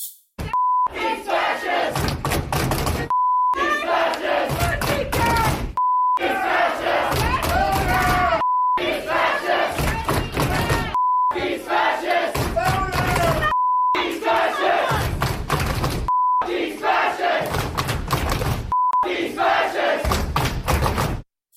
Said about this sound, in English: And they did that by chanting and screaming at him the entire time.